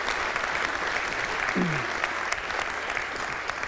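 A steady round of applause from an audience, dense and even clapping that holds at a moderate level through the whole clip, with a brief whistle-like tone rising above it midway.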